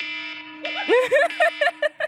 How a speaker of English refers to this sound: I have to tell you that I never remember to change my phone alarm sound away from that. So that is the nightmare noise that wakes me up every single morning.